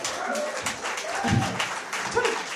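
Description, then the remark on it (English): An audience claps in a dense, steady patter for a couple of seconds, with a few scattered voices and murmurs mixed into the applause. “I know the ego was thinking, I wish I'd said something funny for you to clap then, but yeah, that'll do.”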